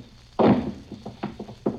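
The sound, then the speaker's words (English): A heavy thud as someone drops down onto a floor just inside a door, followed by a few lighter knocks and shuffling bumps, with no talking. “Don't skin your legs on it when you drop.”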